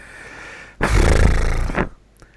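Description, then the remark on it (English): A person lets out a single low, rough growl lasting about a second, loud and rumbling with a gravelly texture before cutting off abruptly. “Oh, no, that was just me growling.”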